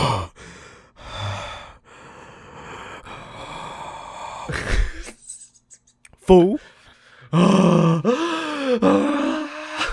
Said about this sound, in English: Deep breaths. No, you deep breaths, dog. No, I'm joking. Deep breaths. I am deep breathing.